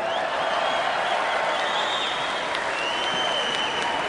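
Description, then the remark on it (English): A large crowd cheers and applauds a speaker continuously, a dense, steady wash of clapping with whoops and whistles rising above it, sustained at full volume throughout. “Are you cheering because we're ugly?”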